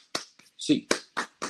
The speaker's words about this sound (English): Get your hands up, Bruins fans. 8 clap time, baby. And 1, 2, 3, 4, 5, 6, 7, 8.